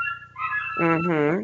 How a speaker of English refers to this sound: Oh, Taco, my dog's howling. He the batteries must have ran out of his bark collar.